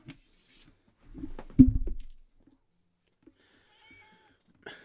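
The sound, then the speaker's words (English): A big gray cat lets out a loud, drawn-out meow right up close to the microphone, rising in a harmonic wail around the middle, with a few softer rustles and faint sounds before and after. “Okay, the point is not the cat screaming into the microphone.”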